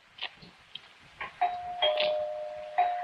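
household object, doorbell ringing

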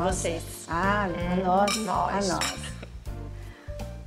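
household object, glasses clinking

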